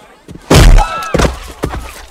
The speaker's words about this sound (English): He punches him out and then kicks him one more time.